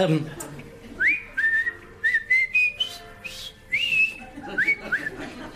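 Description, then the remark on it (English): Someone whistles the Colonel Bogey March, a bright run of short, bouncing notes with quick upward slides between them, clear and fairly loud with only faint background noise. “I whistled that in the prison camp.”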